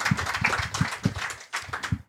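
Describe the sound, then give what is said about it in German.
An audience applauds with a steady, dense wash of clapping that runs for about two seconds, punctuated by a few low, rhythmic thumps. “Du darfst dir deinen wohlverdienten Applaus einholen, dass du jetzt zu mir gekommen bist.”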